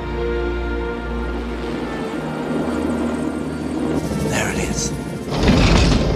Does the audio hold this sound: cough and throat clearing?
no